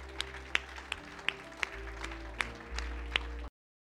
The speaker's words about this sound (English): Let me just give the Lord a round of applause.